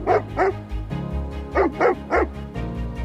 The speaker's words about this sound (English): Then, our dog started barking.